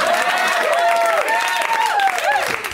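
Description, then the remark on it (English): An audience at a comedy show applauds steadily, a dense wash of clapping mixed with overlapping whoops and cheers rising and falling in pitch, loud throughout and only easing slightly at the very end. “And let's hear it for these people.”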